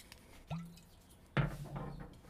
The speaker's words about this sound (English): Let me pour in more 1856 real quick.